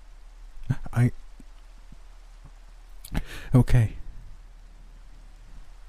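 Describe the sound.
Steady, soft rain hisses in the background throughout, with occasional faint drip-like clicks, while a person speaks a few short phrases over it.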